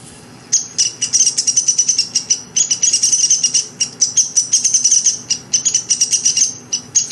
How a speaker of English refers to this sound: And now let's try the calls of the downy woodpecker. Here we go.